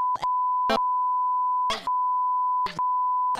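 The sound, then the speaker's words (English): A steady, loud censor bleep tone runs for several seconds, broken by brief bursts of speech that poke through between stretches of the tone. “every time you hear this word, and every time I say I'll just... you please just put a beep there.”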